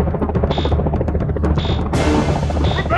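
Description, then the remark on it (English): A helicopter in a Jurassic Park scene drones loudly and steadily, its rotor thumping in a fast rhythmic throb, with a rushing wash of noise and intermittent high whines layered over it. “Oh, helicopter.”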